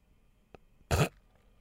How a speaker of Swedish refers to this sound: Och sen så här. Alltså det andas väldigt mycket med munnen. För att det är mycket slagg i näsan. Det är konstigt att det där är mina ljud.